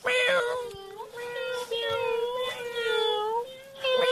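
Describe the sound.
People, prompted on a count of three to be a kitty cat, imitate a cat, drawing out long, wavering meows at a fairly high pitch. The mewing runs almost continuously for about four seconds, with brief dips between overlapping calls.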